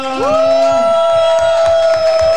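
An audience applauds with steady, overlapping claps while a loud, sustained cheer rises in pitch at the start and holds over the clapping.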